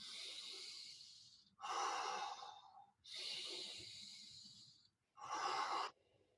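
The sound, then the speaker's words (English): Deliberate breathing in a steady rhythm: long airy inhales alternate with shorter, fuller exhales, two full cycles with brief pauses between, and no talking. “But what we can do is we can prevent it by doing rhythmic breathing.”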